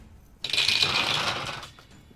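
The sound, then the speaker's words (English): Dice clatter and roll across a hard surface in a quick, rattling burst lasting about a second, fairly loud, as dice are rolled again for an attack in a game, then settle into quiet. No one speaks. “I'm going to drop one of these dice and then roll that again for the attack that critically struck him in the throat.”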